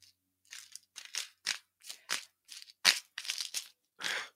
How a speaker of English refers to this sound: One second, just trying to open this bottle.